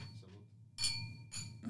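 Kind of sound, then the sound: household object, wine glasses clinking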